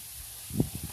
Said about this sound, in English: Hear that, citizens? That is hail. Yes, the hail has begun.